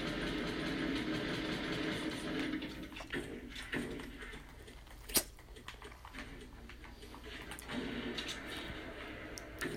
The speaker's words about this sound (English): What the fuck is that? I don't know. There are fucking cars in this game now?